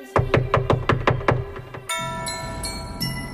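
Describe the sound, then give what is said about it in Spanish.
About eight quick, evenly spaced knocks on a door ring out loud, then stop as bright electronic tones and music take over. “Pues dale, yo le toco la puerta y tú le disparas.”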